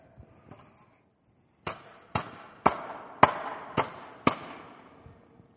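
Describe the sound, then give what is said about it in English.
A hammer strikes a wooden fence board six times in a steady rhythm, each blow a sharp, fairly loud knock with a short ringing tail, after a brief quiet stretch at the start. “We pick up a hammer, we put it back where it goes, and we start to hammer it back.”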